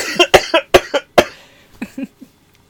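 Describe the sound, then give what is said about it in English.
A loud coughing fit: a rapid string of about six harsh coughs, then a brief pause and a few weaker, raspier coughs trailing off into quiet. “How is it that you're coughing more than I am?”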